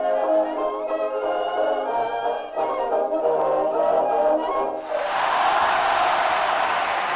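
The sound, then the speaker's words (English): A few seconds of sustained tonal music give way abruptly to a dense, loud burst of audience applause for a song that continues steadily to the end. “Listen to that applause for ….”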